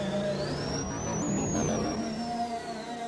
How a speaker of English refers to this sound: We collected a bunch of mechanical sirens, and that one was a real star. We took it and recorded it down in the parking garage so it really would echo. Now, we used this for the speeder's dive in the speeder chase.